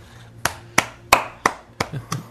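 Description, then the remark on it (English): Six sharp, fairly loud hand claps in a slow, slightly uneven rhythm with nothing else around them. No one speaks. “That's an applause?”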